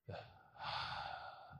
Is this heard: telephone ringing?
no